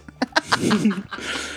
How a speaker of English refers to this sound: Hey, it made a fart noise, so.